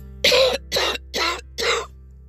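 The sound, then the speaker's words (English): Four harsh coughs in quick, evenly spaced succession, each a short rough burst with a throat-clearing quality, and no talking around them. “The coughing, excuse me for a second.”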